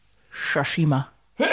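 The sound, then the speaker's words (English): A single loud, voiced sneeze brought on by dust: a sharp breathy burst that breaks into a pitched vocal tail, followed by a short pause and then another abrupt breathy sound. “Bless you.”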